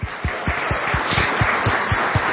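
An audience applauds in a steady, dense wash of clapping, with a regular low thumping pulse running beneath it, welcoming a guest invited up to the front for an interview. No one speaks.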